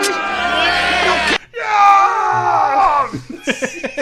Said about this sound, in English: The first person to start yelling in the background is ….